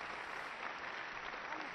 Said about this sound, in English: Okay, that's enough with the clapping.